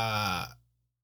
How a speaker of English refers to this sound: cannot stop yawning.